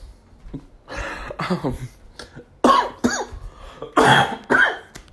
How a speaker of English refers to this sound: I swear to Jesus, it would not be an episode without me coughing at you guys. And there's really no reason. I'm not sick or anything.